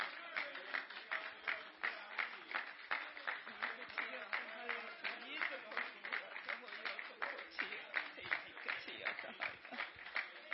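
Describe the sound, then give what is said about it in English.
An audience claps together in sustained, dense applause as a hand clap of praise to Jesus, running steadily for about ten seconds, a lively wash of many hands with murmuring voices faintly mixed in. “Can we just give Him a hand clap of praise?”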